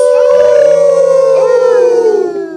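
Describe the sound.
A single wolf howl, long and mournful, holding a steady pitch before sliding slowly downward and trailing off. It is loud, with no voices over it.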